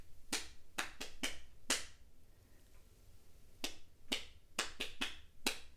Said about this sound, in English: And usually, you know, you just clap, don't you? You clap, clap, clap, clap, clap, well done, next person. But throughout the whole of this assembly, I'm going to just tap. They clap like this every maybe 10 seconds.